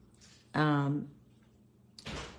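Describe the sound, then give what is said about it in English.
A door swings shut with a soft, muffled thud and latch click, following a brief creaking or voiced sound in otherwise quiet surroundings. “Can you close the door, please?”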